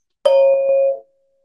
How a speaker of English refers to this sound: And we'll close with the sound of the bell. Just stay with it as long as you can.